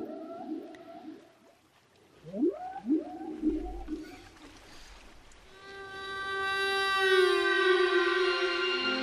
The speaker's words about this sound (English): And they're playing whale songs. And underneath the raft are giant tubes with speakers that are shooting the, playing the whale songs into the water. And you're hearing, they're hearing the whales are starting to hear the whale songs.